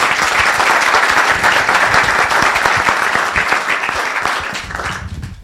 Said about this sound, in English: Yes, sorry, I didn't mean to jump the gun on the applause.